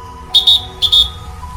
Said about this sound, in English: And may this be the only inadvertent whistle in your day.